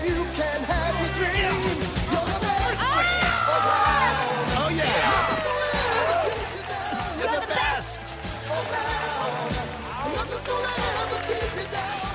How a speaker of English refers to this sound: Here it is. This is the song to end all songs. Are you ready for this? I'm ready. This is the highlight reel of all highlights. Here it comes.